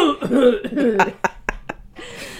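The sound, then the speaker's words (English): A few sharp, hacking coughs from a son burst out in quick succession, fairly loud, right after a stretch of voiced, tonal sound fades. “Got a radical cough there”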